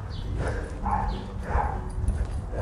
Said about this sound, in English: And oh dear, we're going to make ourselves unpopular, really. These little dogs are barking at us walking past.